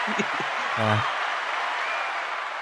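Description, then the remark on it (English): A steady burst of applause from a small group, dense and continuous, with a brief voiced whoop rising over the clapping near the start before it carries on evenly. “A little late, but some applause for Rachel.”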